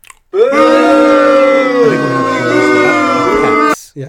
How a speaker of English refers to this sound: Instead of applause, we're gonna have boos for that one.